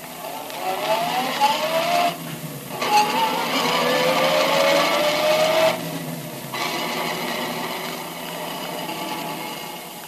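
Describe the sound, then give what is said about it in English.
A car engine runs steadily as Detective Tracy drives his car to Tess Trueheart's home, its pitch climbing as it accelerates through the gears, with brief dips between shifts and a constant road rumble underneath. No one speaks. “We know, but Tracy does not, that Remo lies concealed in the back of Tracy's car while the detective drives to Tess Trueheart's home.”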